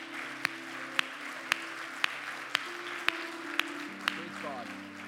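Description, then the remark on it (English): A church audience gives Jesus a round of applause after a prayer, clapping steadily for several seconds, a dense wash of clapping over sustained low organ chords, with a sharp rhythmic click recurring about twice per second. “Come on, can we give Jesus a round of applause today?”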